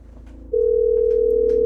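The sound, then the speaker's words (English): A steady telephone dial tone, heard while calling back, switches on after a brief low hum and holds loud and unbroken to the end, a single continuous pitch with nothing else over it. “Yeah, wait, let me call back because I'll say that I came over and I looked at the phone.”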